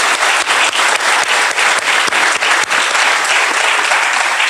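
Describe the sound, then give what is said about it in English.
Steady audience applause, a dense wash of many hands clapping at an even loudness throughout, with no voices standing out above it, welcoming Jim Ananick, Democratic Senate Minority Leader who represents the city of Flint, at an event about the Flint water crisis. “Let's give Jim a hand for being here as well.”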